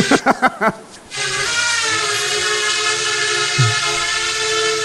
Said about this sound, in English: I'm just spinning it around 180 degrees. And here he comes. So I'm going to let him... I'm going to bring him down, like, right in front of the camera. For those in the car, the drone's currently hovering.